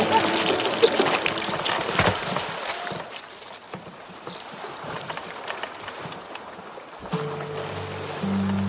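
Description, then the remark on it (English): Water pours and gushes steadily into a sinking boat, a continuous rushing with splashes and knocks, surging loudly at the start and again near the end. “The boat, it's still sinking.”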